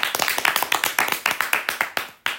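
A quick burst of applause, sharp claps coming in rapid, slightly uneven succession for a couple of seconds, crisp and fairly loud, with no voices over it.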